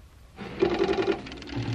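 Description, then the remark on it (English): A computer ticking over as it calculates the estimated arrival time of asteroid 738: a rapid, steady mechanical chatter starts suddenly, with a short run of quick low-pitched pulses riding on top, at moderate volume with no voices. “Is that his brain ticking over?”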